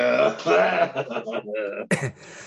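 A person coughs and clears their throat several times, the sounds rough and voiced, ending with a sharp, harsh cough burst followed by a lower, raspy exhale.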